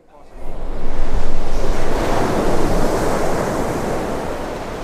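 Sea waves break and wash onto the shore in a steady, loud roar of surf, swelling in the first second and then rolling on continuously, with some wind buffeting the microphone.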